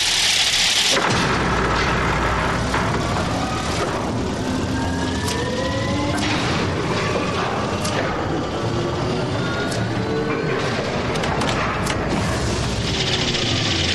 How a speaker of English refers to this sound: I managed to get a recording of the machinery starting up, and it sounds just like a jet engine starting up and doors closing. So listen to this and see if it sounds to you like something getting ready to lift off.